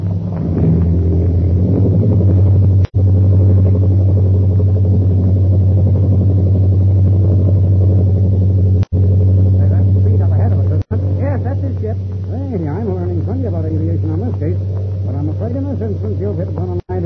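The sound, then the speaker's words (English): A loud, steady, low-pitched airplane engine roar drones throughout as the plane takes off down the runway, with a few brief dropouts, and voices talk over it during the second half. “We'll take off right behind it. I'm ready anytime you are. Field's clear. Here we go.”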